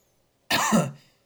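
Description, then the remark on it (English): A single sharp cough bursts out suddenly and fades within about half a second, standing alone against near silence. “And don't include that cough, by the way.”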